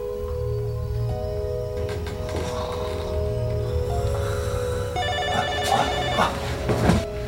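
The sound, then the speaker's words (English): A telephone rings with a steady electronic trill over a low rumbling background hum, the ringing tone brightening and growing a little louder toward the end. “You're welcome to use my phone if you'd like.”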